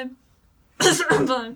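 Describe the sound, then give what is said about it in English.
After a brief silence, someone coughs in the background, a harsh, raspy burst in two quick pulses that trails off into a rough throat-clearing sound. “keeps coughing in the background.”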